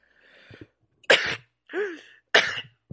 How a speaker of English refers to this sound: What? Sneezing? I just sneezed a couple of times.